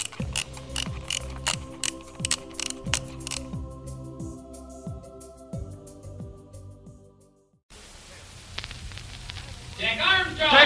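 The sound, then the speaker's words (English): Rapid, rhythmic ratcheting clicks of a clock's gears being wound backward, loud, with whirring tones sweeping downward for several seconds before cutting off to a noisier, rustling background. “We'll continue to do our best with episodes 21 and 22, so wind back those clocks.”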